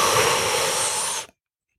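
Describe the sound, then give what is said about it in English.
A loud, airy intake of breath, a steady breathy rush lasting just over a second before cutting off abruptly into silence. “Because really, to get it even more simple, we take a breath in.”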